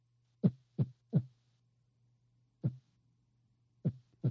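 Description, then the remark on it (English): Low, thudding arrhythmic heartbeats arrive in an uneven pattern: three quick beats, a long pause, a single beat, then two more, all over a steady faint low hum. “Let me get some arrhythmia.”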